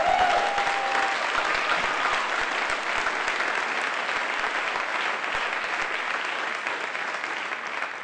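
A crowd applauds steadily for about eight seconds, cheering the news that the city approved their project in 15 days, a dense wash of many hands clapping at an even loudness that tapers only slightly toward the end, with no talking over it.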